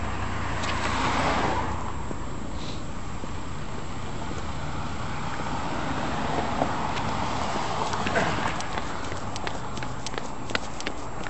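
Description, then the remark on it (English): Steady outdoor traffic noise, a low rumble of cars going by on a street as someone jaywalks past police, with faint clicks and scuffs near the end that could be footsteps. No one speaks. “I won't solve problems of the world if I get creamed by a car.”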